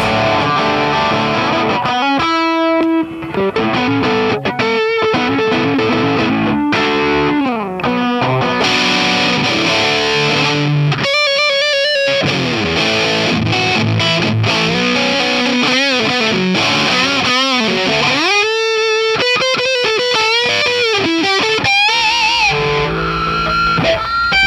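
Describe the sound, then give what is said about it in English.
An electric guitar played through a TV Jones neck pickup, loud and overdriven, running through sustained lead notes, quick runs and wavering bends with no talking over it. “Oh yeah, this is a TV Jones pickup.”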